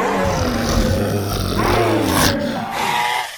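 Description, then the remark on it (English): Several deep, rumbling dinosaur growls, from Buck and the triplets at a small raptor, overlap in a loud, continuous snarling roar, with a brief sharper rasp partway through before the growling fades at the end. “Buck and the triplets growled at Ash's raptor, and the raptor nipped at them.”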